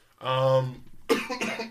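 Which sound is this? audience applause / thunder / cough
cough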